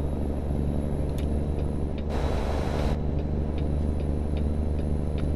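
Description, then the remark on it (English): A steady, deep engine rumble fills a truck cab while driving, with a regular light ticking throughout and a brief burst of hissing air partway through. No one speaks. “I do like this truck in that the mirrors kind of like, you don't really need to pop your head out the window.”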